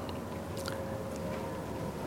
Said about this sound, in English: The artwork inside by artist Ray Knighton is called Matrix. Water flows out from the ground here and there in a day-long motion.